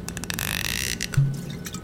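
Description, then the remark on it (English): Liquor from a bottle of Dos Maderas Luxus glugs into a glass in a short, steady pour with soft gurgles and splashy bursts, ending in a brief low clunk. No one speaks. “I was saving this bottle of Dos Maderas Luxus for a special day, and the 21st is quite special.”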